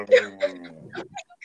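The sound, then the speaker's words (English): A dog named Wally lets out a drawn-out, groaning moan, low and cow-like, that lasts under a second before trailing into softer rustling and faint vocal sounds. “Don't mind my dog being a demon.”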